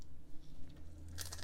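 Close, crisp crunching as someone bites into crunchy food right by the microphone, a quick burst of sharp crackles near the end over a low background hum.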